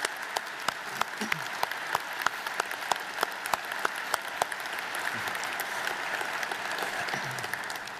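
An audience applauds steadily for about eight seconds to honor the mothers in the room on Mother's Day weekend, a dense wash of clapping with sharper individual claps popping out early on, holding a fairly even volume with no voices over it.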